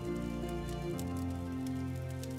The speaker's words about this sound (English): Hear the pop and crackle of every piece of wood burning away for the night. You are relaxing in a log cabin,